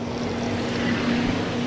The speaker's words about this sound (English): As we wait for the big trucks to go by. Go big trucks.